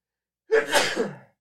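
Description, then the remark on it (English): A single loud human sneeze with a sharp intake of breath leading into a forceful burst that trails off, heard on its own with no talking. “I'm going to sneeze.”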